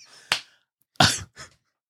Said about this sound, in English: And he's clapping. They heard that.